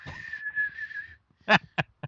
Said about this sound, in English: Just when you get, just whistle into it.